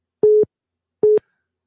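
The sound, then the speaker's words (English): Two steady electronic telephone beeps on a radio call-in line, caused by a caller calling in while others are on the line, at one mid pitch, each lasting about a fifth of a second and separated by a pause of roughly half a second, with silence around them. “Yeah, well, maybe if you didn't call in while other people are on the line, there wouldn't be so much beeps.”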